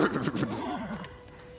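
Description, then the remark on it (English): A horse, poked, lets out a short, startled whinny, its pitch quavering and trembling as the call trails off. One fairly loud burst, alone with no talking. “So as you do it, it pokes the horse and it gives a little bit of a startled sound.”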